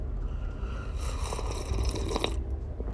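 An airy slurping sip of coffee rises for a second or two, ending in a brief louder draw, over a low steady rumble of background noise.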